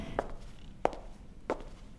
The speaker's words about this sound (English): Every footstep echoes in the silence.